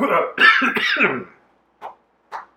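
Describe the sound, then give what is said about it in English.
A person acts out a loud, hacking cough, a rough throaty burst lasting about a second, followed by two short, softer coughs spaced apart in otherwise quiet surroundings. “Smacks him in the back of the head with the spear that's glowing really bright, and then he just, like, coughs out a big clump of purple cloud.”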